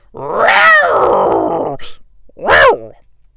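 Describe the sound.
A man's voice imitates wrestler Marc Mero's entrance theme with a loud, drawn-out growling roar lasting over a second, followed by a short breath and a second, shorter guttural roar, with no other sound.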